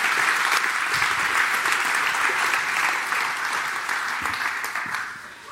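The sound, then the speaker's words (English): An audience claps in a steady, dense round of applause, many hands blending into a continuous crackling roar that holds strong and then gradually eases off toward the end. “And would you guys please go ahead and give a round of applause?”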